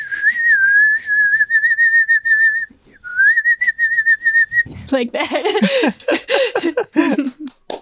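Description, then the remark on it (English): A person whistles an imitation of a New Zealand bird call, a steady warbling tone in two long phrases with a brief pause between, followed by an outburst of laughter from several voices. “So maybe there's like a bird call that you can make. Okay. Like a New Zealand bird call.”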